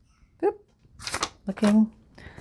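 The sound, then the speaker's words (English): Two paper clips are slid onto a stack of 15 sheets of purple or red cabbage-dyed paper to align it, in a few quick rustling scrapes, with a soft murmur from a voice between them. “So I grabbed 15 pieces of my purple or red cabbage dyed paper, and I'm going to put two paper clips on it to align it nicely.”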